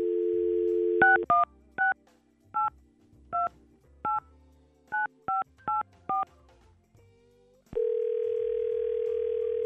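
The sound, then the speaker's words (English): A phone's dial tone hums, then about ten touch-tone keypad beeps are dialed in a quick, uneven sequence as a radio station calls a woman, followed by a steady ringing tone that carries to the end. No one speaks. “I think we got to try to get her on the phone and help out Jacob.”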